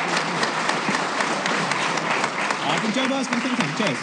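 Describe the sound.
Sustained audience applause for the panel members at the end of a comedy show, a dense steady patter of many hands clapping at an even loudness throughout, with a few voices calling out underneath toward the end.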